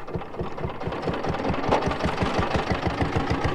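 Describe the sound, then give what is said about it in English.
A tractor engine chugs steadily, its low, rhythmic knocking pulses repeating evenly at a constant idle with no voices. “Tractors would pull these large drill seeding farming implements.”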